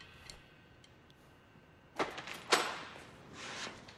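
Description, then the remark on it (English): A door bangs shut with a sharp, fairly faint thud, followed closely by a second clunk and then a brief rustling hiss, otherwise quiet with no talking. “I love how in the middle of that, he's so into it, then he looks up, hears the door slam, and he's just gone.”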